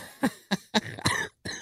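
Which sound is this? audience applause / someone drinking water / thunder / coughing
coughing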